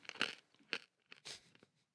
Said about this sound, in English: Dude, it's so loud. What is it? Oh, I'm just chewing coffee. I know. Yeah. They're thinking we're mixing cement.